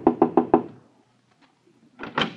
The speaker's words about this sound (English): This is Eric Stevenson's room, Inspector Thorne. I'll knock on the door.